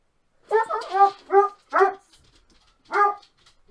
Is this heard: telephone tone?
no